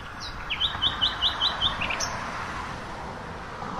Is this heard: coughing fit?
no